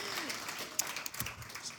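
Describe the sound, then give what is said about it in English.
An audience applauds students being sent off to college, a dense, steady patter of many hands clapping at a fairly soft level, with a brief voice sounding faintly at the start. “Let's pray or clap for them one more time.”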